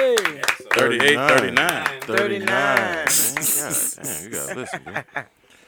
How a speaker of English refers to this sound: Clap it up then